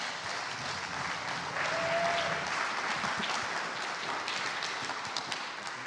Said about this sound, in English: have her come up and give her a big round of applause.